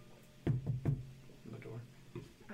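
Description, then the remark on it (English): Two firm knocks on a wall by an open door in quick succession, followed about a second later by a single softer tap, with faint low murmuring in the background. “On the wall, just so for politeness. On the open door.”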